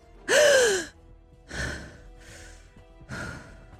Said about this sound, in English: I gasped in shock, then took a few deep breaths.